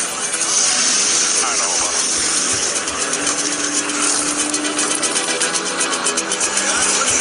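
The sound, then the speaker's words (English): A dense, loud roar of many race car engines firing up and revving together at the start of a race in Homestead, continuous throughout, with indistinct voices mixed into the din. “Drivers, start your engines. Crank them up, hey, crank them up.”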